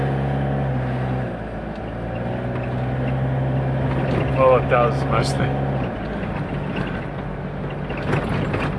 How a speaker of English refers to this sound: You get the feeling about being over the wheels there with those bumps. It's a good sound as well.